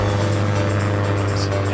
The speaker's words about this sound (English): Talking of loaded casts, play the Films Are Watching the Plane jingle.